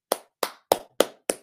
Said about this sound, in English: Had a clap for that.